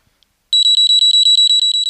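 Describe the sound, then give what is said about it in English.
A loud electronic alarm from an overheat detector's inbuilt alarm, which sounds once it detects a temperature over 54 degrees Celsius, beeps rapidly and steadily: a high-pitched pulsing tone repeating about a dozen times after a brief silence, clear with no talking. “There's an inbuilt alarm in the device, so once it detects a temperature over 54 degrees Celsius, it sounds the alarm and alerts you to the problem.”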